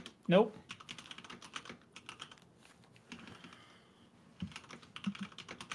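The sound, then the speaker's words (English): Rapid, irregular clacking of keys on a computer keyboard, fairly quiet, as someone types a post on Discord, with a short pause midway before the typing resumes; a brief vocal sound appears near the start. “What are you doing? Typing, sorry.”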